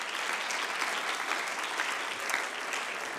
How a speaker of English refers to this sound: Can we just give a hand clap of praise to God today?